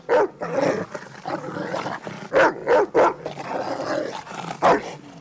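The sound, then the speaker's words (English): A dog barks in a quick run of loud bursts, with a rough, snarling growl rumbling between the barks; no one speaks. “That ain't no attack dog you got.”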